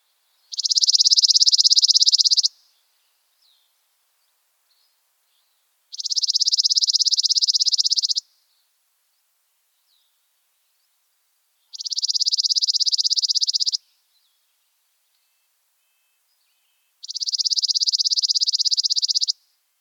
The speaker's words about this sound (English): Trillers are tricky. There are a few things we can listen for to help us out. The tone of the trill, the overall length of the song, and any changes to volume, pitch, or tone. With that in mind, let's listen to our first bird song.